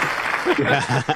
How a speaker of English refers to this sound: He had to pause to applaud himself.